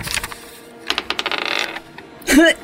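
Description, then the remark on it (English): A quick burst of rattling clicks as dice are rolled for a perception check in a tabletop role-playing game, tumbling and clattering across a surface for under a second, followed by a short, rising vocal exclamation. “Roll a perception for me, everybody.”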